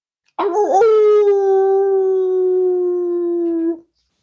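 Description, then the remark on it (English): A man's voice imitates a dog: a short rough yelp opens into one long, steady howl held for about three seconds, loud, with no other sounds around it. “That was a nice bark”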